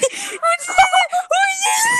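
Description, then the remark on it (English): A girl, someone's sister, moans loudly while eating, in a strained, high-pitched voice, a string of wavering, drawn-out cries over about two seconds, with no clear speech. “Stop moaning. Sorry, that's my sister.”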